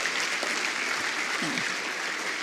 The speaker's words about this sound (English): Thank you so much, church. Please give these mums another clap. Thank you, ladies.